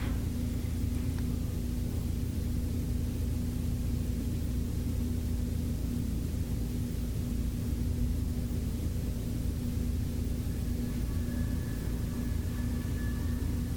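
A steady low rumble of a car on a highway, holding at a constant level without a clear pass-by peak, with a faint hum running beneath it and no voices.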